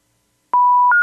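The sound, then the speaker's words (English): Telephone line tones signaling a call that won't connect, with no call route available: after a brief silence, a steady beep steps up to a higher pitch, loud and clear with no voices. “There is no call route available.”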